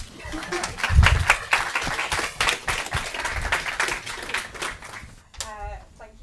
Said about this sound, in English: You can clap her now.